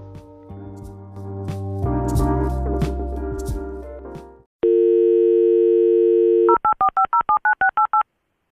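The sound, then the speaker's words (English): A brief stretch of music cuts to a steady, low dial tone held for about two seconds, then a quick run of around ten beeping keypad tones as a phone number is dialed to reconnect a call after a disconnection. “We're reconnecting back in.”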